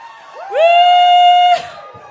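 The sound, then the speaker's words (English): A studio audience at Oprah Winfrey's show cheers, led by one loud, sustained high-pitched whoop that rises and holds for about a second over a faint crowd murmur, then cuts off into a brief noisy burst. “And I wondered how you said, I wondered how many of those people in that audience wouldn't have gotten up and shouted in a church service for nothing.”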